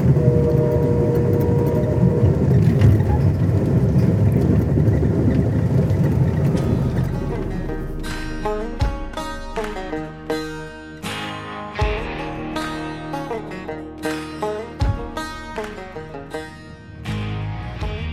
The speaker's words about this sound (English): But let's just listen to the train rolling out of Mount Pleasant, Iowa.